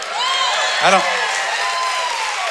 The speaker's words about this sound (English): Y'all clapped louder, hooted, and hollered during that than you did about any of the songs we just sang about joy to the world.